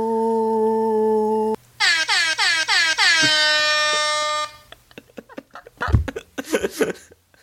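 A sustained horn tone gives way to a rapid series of loud, blaring air horn blasts with falling pitch sweeps, followed by scattered laughter and voices.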